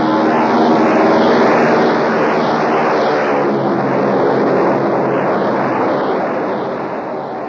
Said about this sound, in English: There's a plane taking off. He doesn't see it. He's running right across its path. Hey! Hey, look out! Look out!